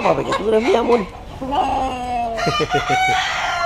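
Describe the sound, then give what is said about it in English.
A red and black rooster clucks fairly loud, with drawn-out throaty calls at first, then a quick run of short, choppy clucks toward the end. “And this one, he said, picking up a regal red and black rooster, this one is my love.”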